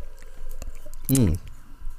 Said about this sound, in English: My bad. Poorly timed sip.